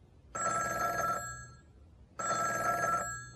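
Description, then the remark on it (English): A telephone rings twice in a steady, trilling double burst, each ring lasting just under a second with a brief pause between, clear with no voices. “Listen to the following phone conversation.”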